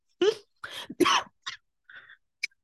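Three harsh coughs in quick succession, followed by a few quieter, short throaty bursts trailing off.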